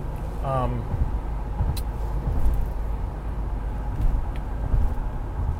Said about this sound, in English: Sorry, changing lane. Yeah, always alone in the traffic when I'm changing lanes here.